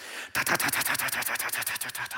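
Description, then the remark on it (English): A voice imitates a Lister pump engine running at a pump house: a fast, steady series of loud, rough chugging bursts, about a dozen in under two seconds, after a brief silence, with no talking. “Anyway, now, it was the pump, the engine that we used on the pump was a Lister pump.”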